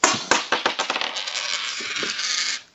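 A tossed coin lands with a bright metallic clink, bounces several times in quickening succession, then rattles and spins on a hard surface for about two seconds before abruptly settling on tails. No talking.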